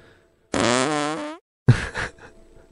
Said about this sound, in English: I wanted him, I heard him laugh a couple times because I was playing like fart sound effects.